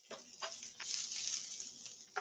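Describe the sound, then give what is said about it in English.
Steady sizzling hiss of food frying in a pan, with scattered crackles and pops, fairly quiet and heard alone without any talking. “I'll remember to mute myself next time I'm frying stuff then.”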